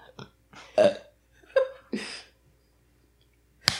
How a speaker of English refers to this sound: It's just funny to me that I have a burp.